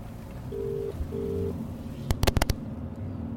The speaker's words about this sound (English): It's a phone call anyway. Let me put it on speaker.